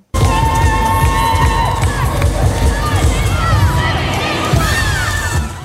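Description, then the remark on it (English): A loud, sustained roar of crowd cheering at the Sea to Sky International Cheerleading Championships at the Vancouver Convention Center, with young teams from across Canada competing, packed with overlapping high-pitched shrieks, whoops and shouts that rise and fall without a break. “The Vancouver Convention Center is erupting with noise this weekend.”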